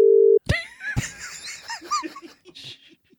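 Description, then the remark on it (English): A short, steady telephone ringing tone on an outgoing call to a woman sounds alone for a moment, then gives way to loud laughter from several people. “So Rod's got a phone number. He's going to call her.”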